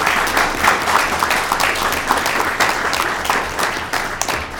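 A crowd applauds steadily, a dense wash of many hands clapping at once that stays loud and even for several seconds with no voices on top.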